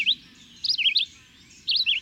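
A small songbird sings bright, warbling phrases in short bursts, three quick runs of high, wavering notes with pauses between, clear against a faint low background hum.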